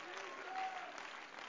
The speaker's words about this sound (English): Come on, let's clap our hands and give praise to him right now.